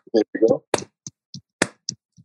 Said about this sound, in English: Patrick Wisdom, rookie of the month in June. Slow clap.